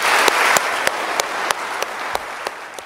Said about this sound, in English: And let's now conclude our very rousing and stimulating evening by giving a round of applause to all of our four panelists.